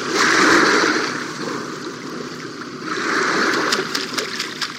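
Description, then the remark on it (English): A herring gull bathes vigorously in shallow water at a seawall on Long Island Sound, ducking, tossing water on its back and working its wings and tail, with two bursts of churning, flicking spray separated by a calmer stretch of lapping water. Fairly loud, with no voices. “this herring gull ducked, tossed water on its back, and then worked its wings and tail like a hand pump, forcing the water through his feathers.”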